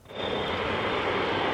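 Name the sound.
airplane engine flying overhead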